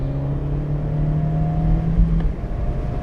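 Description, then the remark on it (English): A small sports car engine revs as it accelerates, a loud, throaty drone whose pitch climbs gradually over a few seconds, with no voices over it. “I just like that gearbox as well.”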